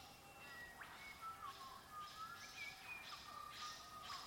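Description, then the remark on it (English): A recording of birdsong: repeated whistled calls and short rising chirps, coming every half second or so over a soft, steady background hiss, fairly quiet, with no one talking. “Take a moment to settle into your comfortable seat and hear the sounds in this recording of the bird song.”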